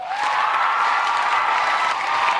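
audience ovation

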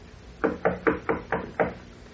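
knocking on a door

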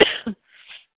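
coughing

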